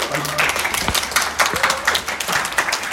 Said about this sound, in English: Hand, big hand, clap.